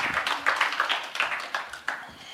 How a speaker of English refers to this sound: Let's give him a round of applause and go sit down.